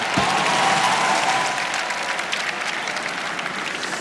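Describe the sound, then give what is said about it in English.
A church audience breaks into steady, dense applause, a loud wash of many hands clapping that holds for a few seconds before easing slightly toward the end. “Let me give you applause.”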